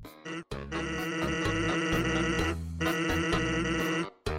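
A steady stream of rapid, buzzy electronic voice blips as a video game character's dialogue types out in a text box, loud, with a brief pause midway, over a low synthesized backing tone.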